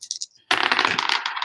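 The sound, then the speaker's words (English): Dice rolled for a rifle roll in a game: a few light clicks, then a dense, continuous clatter of hard little impacts tumbling and rattling for about a second. No voices. “Okay. Hit me with a roll. Your rifle roll.”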